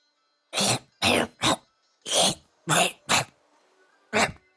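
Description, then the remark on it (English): A run of about seven harsh, throaty coughs in uneven bursts, some coming in quick pairs, loud with short silences between them and no talking. “you start coughing.”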